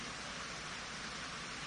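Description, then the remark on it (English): Steady rain falling, a soft continuous hiss spread evenly across the whole moment with no breaks or distinct drops, fairly quiet and diffuse, with no voices. “and you can guarantee the rain falls when I really want to say something very important, and it's this, so listen up.”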